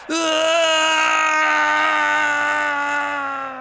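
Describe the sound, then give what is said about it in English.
A man in a town square at night, grabbing his long hair and trying to pull it out, lets out one long, loud scream of agony, held steadily for several seconds before it begins to fade, with no other sounds around it. “He grabs his long, beautiful hair and tries to pull it out. He screams in agony.”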